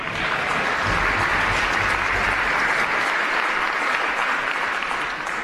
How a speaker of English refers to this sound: So I think we ought to give him a round of applause for his contribution.